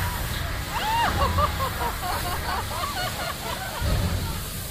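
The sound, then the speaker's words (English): Water sloshes and churns steadily with heavy low rumbling surges as a staged flooding physical effect, while a murmur of voices runs underneath. “Let him know you might be taking on just a little bit of water.”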